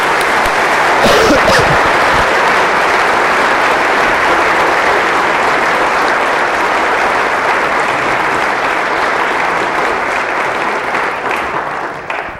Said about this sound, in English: Let's put our hands together for a warm round of applause for Jonathan Safran Foer and Joyce Carol Oates.